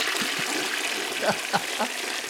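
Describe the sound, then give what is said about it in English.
A toilet flushes with a steady rush of water that fills the whole moment, broken by a few short gurgling pulses near the end, moderately loud. “I already marked you down for a flush.”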